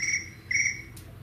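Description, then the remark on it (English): A phone notification tone that sounds like chirping crickets: two short, bright trilling bursts in quick succession, clear, with no talking over it. “But your phone chirp. My phone chirp. It's my crickets.”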